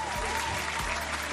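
A steady burst of applause, a dense crackle of many hands clapping at an even moderate loudness for just over a second, ending with a slight low thump.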